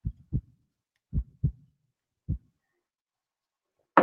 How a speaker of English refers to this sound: You heard my heart. Yeah, I was wondering what that was. Okay. Yeah, I heard my heart beating. That drink made my heart beat faster, louder.